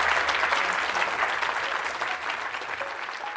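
An audience applauds a panel of three speakers at the end of a discussion, in a steady, dense wash of clapping that holds an even loudness throughout, with no voices standing out above it.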